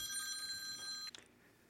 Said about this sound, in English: Ah, my phone. Sorry. Oh, hold on. Hold on.